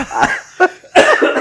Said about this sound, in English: As you can tell, I have struggled. I've been struggling for the last 3 weeks. And you've been coughing since we went to Cleveland.